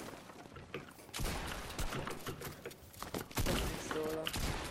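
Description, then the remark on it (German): Video game fire from a standard assault rifle bursts in after a quieter second, rattling off rapid, loud shots in dense sustained volleys, about ten shots aimed at a player's head, with a brief voice-like tone near the end. “Ich habe 10 Schüsse gemacht, der war immer auf deinen Kopf, Bro.”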